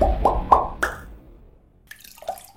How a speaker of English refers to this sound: So I'm scrubbing a pan with this. It's called the squidgy thing. From Creative. We got this from a garden centre and it's described as a hygienic and reusable silicone sponge.